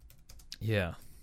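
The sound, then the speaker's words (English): Soft, quick taps on a computer keyboard, several faint clicks in a row, as someone looks up the year divorce became legal in Ireland, before a person's voice briefly cuts in over them. “And you get to hear my typing.”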